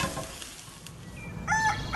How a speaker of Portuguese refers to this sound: No dia seguinte, no cantar do primeiro galo, Tampa e os filhos estão animados com a limpeza do quintal.